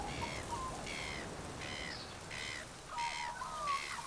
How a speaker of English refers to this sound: Let's breathe and listen to the wildlife in the trees and the ocean below as we collect our thoughts.